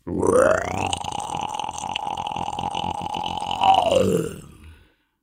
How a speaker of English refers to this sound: High in the canopy, howler monkeys call like Buddhist monks, chanting deep in the throat.